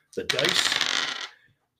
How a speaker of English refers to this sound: It's the Astrogalomancer, and you got it perfect. So, hear them bones a-rattling?